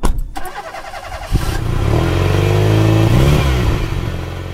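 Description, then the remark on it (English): A car engine starts up and then revs, its pitch sweeping upward through a strong, sustained acceleration, loud, with no voices present. “How well is the engine sound coming through?”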